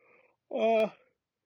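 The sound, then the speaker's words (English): A single drawn-out, moaning yawn rises and falls in pitch for about half a second, preceded by a brief faint murmur and cut by a small click near its end. “Yawn.”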